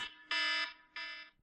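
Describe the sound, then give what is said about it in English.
An electronic timer alarm beeps in two loud, harsh pulses, each lasting about a third of a second, with a short gap between them and no one speaking. “This timer.”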